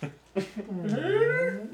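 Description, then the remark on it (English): A person imitates a horse with their voice: two short breathy bursts, then a sustained, wavering whinny-like cry that rises and falls in pitch, moderately loud, with no other talking. “That's like how I make horse sounds.”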